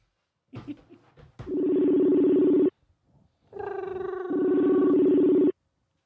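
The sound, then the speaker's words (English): An outgoing phone call ringing: a short burst of clicks and button tones, then two long, steady electronic ring tones with a buzzy harmonic hum, separated by a brief pause. “Oh, he didn't say no, so I'm calling.”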